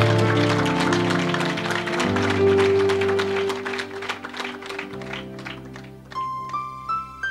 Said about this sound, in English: If we are clapping, let's do that to the Lord Jesus Christ.